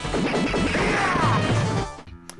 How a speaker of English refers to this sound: This one might be a little hard to guess. I'll play it again. The gunshot sound is pretty distinctive. Yeah, there's something familiar buried deep within that sound effect that almost rings a bell. Almost as if a towering fat cop is shooting at you.